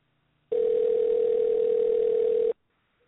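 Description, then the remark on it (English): A steady telephone dial tone hums for about two seconds while calling someone back, one continuous clear tone with no talking, starting and stopping abruptly against near silence. “Let me see if I can get her back this time right here.”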